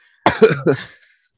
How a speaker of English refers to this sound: I coughed right as I laughed and it sounded like I was giving a hearty belly laugh to that.